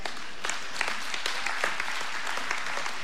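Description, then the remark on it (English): A crowd applauds steadily for a few seconds, many hands clapping at once in a dense, continuous patter without any voices on top; audience members over 50 clapping after a remark about using a hard-copy Bible. “Everybody over 50 clapped.”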